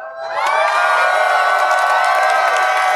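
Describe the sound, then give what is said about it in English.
A hometown crowd erupts into loud, sustained cheering, with high-pitched shouts and whoops layered over a steady roar that swells quickly and holds for a few seconds. “It's great to be in Broward, but I tell you, that's my hometown crowd.”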